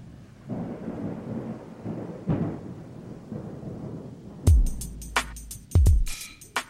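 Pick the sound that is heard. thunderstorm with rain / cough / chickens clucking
thunderstorm with rain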